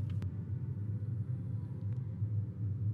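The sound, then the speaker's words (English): A steady low engine rumble fills the scene, several cars idling and creeping slowly down a slope in slow traffic, with a faint tick or two standing out above the drone. “Do the sounds of cars relax you?”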